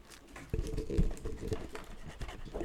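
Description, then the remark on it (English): A voice imitates a scratchy, crinkling noise like crumbling paper, the weird noise a printer made at night in an office room: a few seconds of rough, papery rustling bursts into the microphone with no words spoken. “Like scratching noise?”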